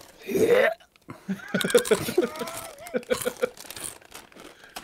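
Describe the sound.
Crunching of Takis chips, a run of crisp, irregular crackling bites mixed with bag crinkles, heard under and between bits of a person's voice.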